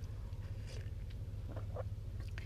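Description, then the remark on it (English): Quiet sipping of coffee by a person with a scratchy throat: a few soft slurps and small mouth and swallowing noises over a steady low background hum, with no talking. “I have to take a sip of my coffee because of my scratchy throat from yelling at my kids.”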